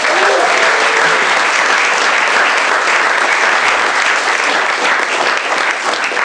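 A crowd applauds steadily, a dense wash of many hands clapping at an even, loud level that fills the whole clip without pause or voices.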